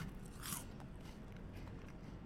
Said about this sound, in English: You have such an issue with people chewing. Yeah. And so for you to right now be chewing into the microphone... Yeah. Is peak hypocrisy.